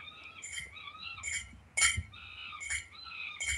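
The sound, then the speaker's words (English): A Monkey Chimes wind-up cymbal monkey toy, like the one in the opening credits of American Horror Story: Freak Show, clangs its cymbals in a steady rhythm, about five bright metallic clashes, with high ringing tones between the hits and a low mechanical whir underneath. “And so, like, this is my new, like, Monkey Chimes monkey.”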